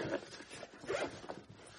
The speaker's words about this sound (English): Stick it in there. All nice and compact. Close the cover. Zip it up.